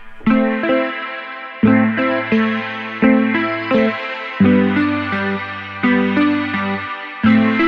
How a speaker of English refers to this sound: We've got a reverb here. We can have a high pass filter, so it only does the high EQ. So you can hear the reverb towers only on our upper frequencies. Have a listen.